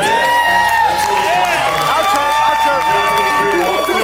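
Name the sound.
crowd cheering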